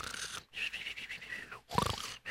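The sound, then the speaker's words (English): A voice imitates loud, exaggerated snoring to pretend to be asleep: breathy rasping bursts, one long and several shorter, separated by brief pauses, with no other sounds. “Let me snore a little louder.”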